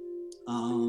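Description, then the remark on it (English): A metal pipe laid out on a frame hums with a steady ringing tone, then is struck again in the middle, a sharp clang blooming into bright, sustained overtones. No one speaks. “So if you say I have the pipe laid out on a frame, I'll hit it in the middle and it'll make one tone.”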